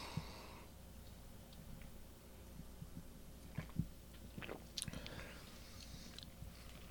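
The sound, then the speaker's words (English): Quiet mouth sounds of someone sipping a dark, malty drink from Carbach, with small wet clicks and swallows scattered across a few seconds over a low background hum, no talking. “We will see if we agree with Mr. Joey Hickman after this sip”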